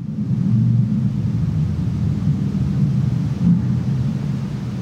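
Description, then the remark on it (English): A steady low rumble of a car passing outside, muffled and fairly loud, swelling briefly toward the end before settling back to a constant drone. No one speaks. “That kind of matches with the car driving by, kind of.”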